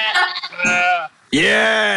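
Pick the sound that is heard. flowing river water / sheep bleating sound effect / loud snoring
sheep bleating sound effect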